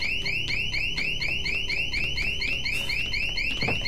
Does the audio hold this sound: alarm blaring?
yes